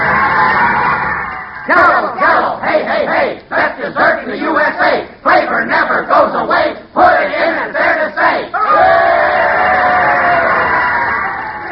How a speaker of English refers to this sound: To those cheers, folks. There must be 18 people here today.